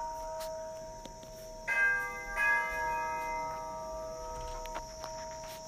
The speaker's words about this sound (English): Okay, so there's another bell and it's time to go. Perfect timing, right? Just when I said I'm going to talk only about one person today, then my dear cook and house help has arrived